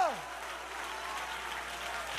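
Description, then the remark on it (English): A church audience stands and claps their hands in thanks for the love of God, a steady, dense wash of applause, with crowd voices mixed in. A brief falling vocal tone sounds at the very start. “Can you stand to your feet and clap your hands if you're thankful for the love of God?”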